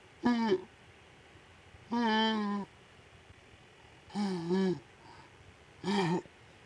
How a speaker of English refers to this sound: I'm yawning too.